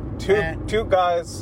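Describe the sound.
Steady low rumble of road noise inside a moving car as it turns left into an airport, continuous and fairly loud, with a person talking over it throughout.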